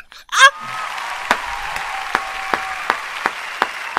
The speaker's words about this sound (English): Why are you clapping? That was horrible. That was beautiful.